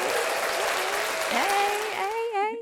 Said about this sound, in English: Hold on, I can give you the claps.